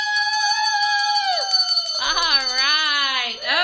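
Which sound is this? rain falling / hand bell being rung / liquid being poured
hand bell being rung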